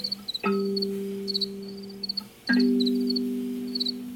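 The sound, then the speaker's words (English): Crickets chirp in quick, rhythmic bursts over a low, sustained musical drone that swells in twice with a sharp attack. Nobody speaks. “The cricket songs are like the real point of entry into all of that.”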